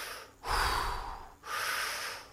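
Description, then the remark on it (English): A voice imitates the heavy breathing of a man who, holding on to a cable, looks at the water: two long, loud, rushing breaths, each lasting about a second with a short pause between them. No speech. “And then all of a sudden, he just turns around, holding on that cable, looks at the water, and starts doing this heavy breathing.”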